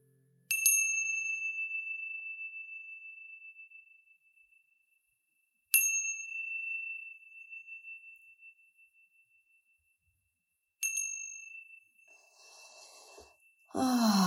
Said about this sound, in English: Now wiggling your fingers, wiggling your toes, when you hear the sounds of the chimes, coming back into this space.